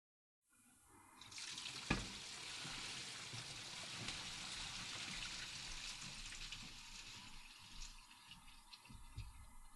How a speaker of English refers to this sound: Pretty sure your microphone just caught you peeing. Because I'm pretty sure I just heard your stream hitting the toilet water.